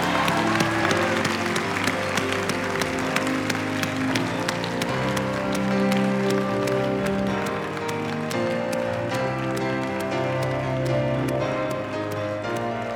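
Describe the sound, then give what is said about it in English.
An audience gives one more round of applause to celebrate a group as they head out into their future. The clapping is a dense, even wash that stays loud throughout, with music with sustained tones playing underneath. “Well, I'm going to ask you to have one more round of applause as they head out into their future.”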